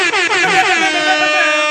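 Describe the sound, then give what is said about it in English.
A loud air horn blares alone for nearly two seconds, its brassy tone wavering at first before settling into a steady, sustained blast. “I'm going to do some air horns for that one.”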